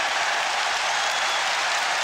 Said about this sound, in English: He salutes the crowd, he gets applause from his manager and the bench and from the Tottenham fans as well.